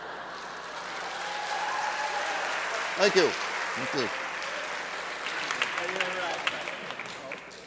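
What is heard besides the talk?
audience applause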